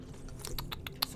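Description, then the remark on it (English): Someone sips soda right on the microphone as ASMR, producing a quick run of wet, clicky mouth and slurping sounds, about six sharp ticks over a second with a soft hiss underneath and no talking. “Take a sip of your soda on the mic.”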